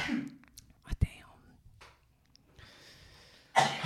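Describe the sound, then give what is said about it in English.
A single sharp sneeze bursts out, sudden and loud, framed by soft breathy whispering and rustling, with another noisy breath-like burst near the end. “Bless you.”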